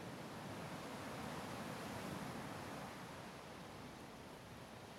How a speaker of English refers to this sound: White peaks rise in a line out in the water, crashing on a stone breaker that keeps the water close to the shore, peaceful and calm.